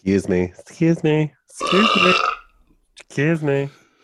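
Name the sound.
burp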